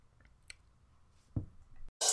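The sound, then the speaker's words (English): Someone sips hot mint tea: quiet wet mouth noises and a soft click, then a brief gap before a louder, airy slurp at the end. No one speaks. “I'm sipping my tea right now. Literally, I'm drinking mint tea.”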